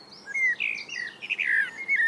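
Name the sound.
blackbird singing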